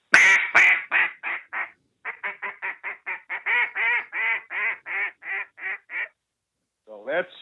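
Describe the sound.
A duck call blown in blind-style calling, as used from a hunting blind when ducks are seen, a long run of loud, raspy quacks in a steady cadence that gradually eases off, followed by a brief pause and a short final burst.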